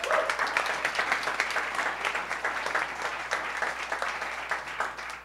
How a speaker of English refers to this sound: Big round of applause for Nick Cho.